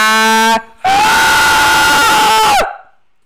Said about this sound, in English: And that would be the goat scream. You're welcome.